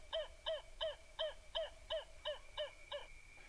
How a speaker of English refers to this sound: emblematic sound of Australia, dusk and dawn, the kookaburra bird,